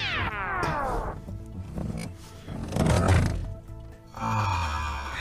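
A newly arrived Lazy Boy recliner chair being reclined for the first time, slowed way down: deep, drawn-out groaning creaks that slide downward in pitch, swell into a rough, roar-like rumble, then end in a sustained mechanical drone. No one speaks.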